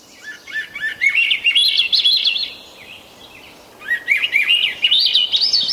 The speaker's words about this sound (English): And that's why the male thrush sings that haunting song.